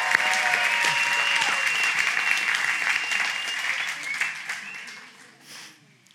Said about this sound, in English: Can we give you, these guys a round of applause?